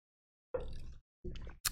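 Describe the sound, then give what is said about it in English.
Two wet sipping slurps of hot coffee, one after the other with a short pause between, followed by a brief sharp click; no one speaks. “Sip your coffee. Take another one.”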